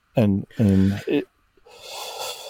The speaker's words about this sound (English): Just that was the biggest yawn I've ever seen.